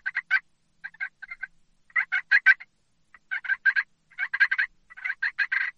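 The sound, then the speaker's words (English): Rolling purrs made on a turkey call while blind calling for turkeys, played in short trilling bursts grouped in clusters with brief pauses between, moderately loud, with no talking. “You can throw in some purrs.”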